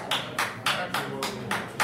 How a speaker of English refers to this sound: The marshals are over here clapping.